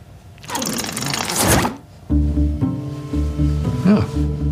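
A zipper on a suit worn over another suit is pulled up in one steady, raspy stroke lasting about a second and a half, fairly loud, followed by a low humming drone.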